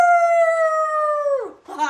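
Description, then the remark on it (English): A person imitates a wolf howl, holding a long steady tone that slides down at the end, followed by the start of a second rising howl. Loud, with no other sound. “Somebody howl for the she-wolf.”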